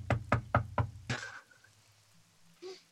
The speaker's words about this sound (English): Hey guys, what if we knock? Try it. Okay.